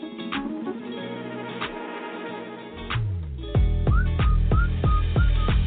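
A song plays with a bright whistled melody, short rising whistle notes repeating in a steady rhythm over a thumping beat that grows louder partway through. No one talks.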